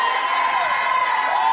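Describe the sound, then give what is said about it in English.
A large crowd shouts and cheers continuously, a dense, steady roar of many voices with high whoops rising above it, loud throughout. “Oh, don't stop shouting.”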